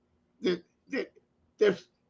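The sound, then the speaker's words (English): Three short, husky coughs from one person, spaced about half a second apart, each a brief burst with a throaty, voiced edge and no talking; a lingering cough just after getting over a cold. “Pardon me, I had just gotten over a cold, so I still got a bit of a cough.”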